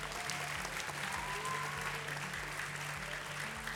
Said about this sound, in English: Can I have our other guests join us on stage, please? Let's give all our guests a big round of applause again. Thank you.